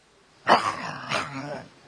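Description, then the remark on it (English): A person imitates the growl of a dog chewing and eating a bone: a short, rough, throaty rumble that starts abruptly with a strong onset, then trails off in a second, slightly weaker gravelly burst, moderately loud. “And every time he would chew on the bone and eat the bone, you would hear a growl.”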